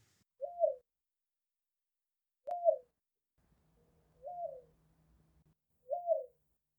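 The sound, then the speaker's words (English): A dove coos four times at steady intervals, each soft rising-and-falling hoot clear, with a faint low hum in the background between the third and fourth calls. “Do you like that little vocal that I gave you of the sweet sounding dove?”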